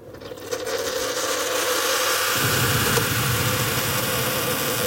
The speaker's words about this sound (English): And that big whoosh and that little blop, blop, blop, blop, blop tells me that my water is boiled.